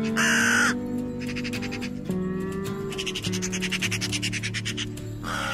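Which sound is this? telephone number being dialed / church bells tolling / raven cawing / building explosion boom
raven cawing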